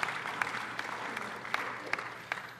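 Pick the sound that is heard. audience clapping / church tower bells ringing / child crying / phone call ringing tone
audience clapping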